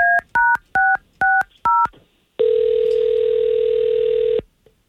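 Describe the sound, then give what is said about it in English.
Five quick two-tone telephone keypad beeps in a steady rhythm, followed by a long, steady ringing tone lasting about two seconds, loud with no talking, as a radio morning show in Central Florida calls a listener. “We're going to call her.”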